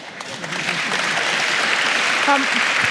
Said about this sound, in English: I'd like you to continue to clap and thank our panellists for this afternoon. Judith Sloan, Mark Carnegie, Mark Latham.